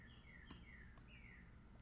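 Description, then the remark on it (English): A bird chirps softly, giving three or four thin, downward-sliding whistles, followed by a sudden louder knock at the very end. “It's a bird. Bird sounds.”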